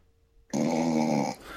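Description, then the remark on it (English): A person fakes a snore: one loud, raspy, rattling inhale lasting under a second, after a brief quiet pause, with no talking. “Give me your snore.”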